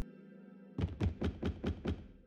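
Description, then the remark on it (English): A steady low hum gives way to six firm, evenly spaced knocks on a door, dull thudding raps in a quick regular rhythm with no voices. “Sarah, check who's knocking on the door.”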